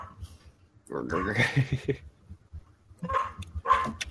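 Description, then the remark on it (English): Dogs bark in a room: a burst of loud, overlapping barks, a brief pause, then a couple more sharp barks, with people's voices mixed in. “Get out of here, dogs.”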